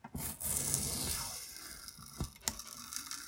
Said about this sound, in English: I think I might have to stop and clean the blade here. It's starting to get harder to cut.